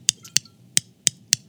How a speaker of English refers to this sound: That is a 20-sided die. Clinking with a 10-sided die. I had a choice. I could have used a 4-sided die, but I don't feel it has the same sort of chutzpah.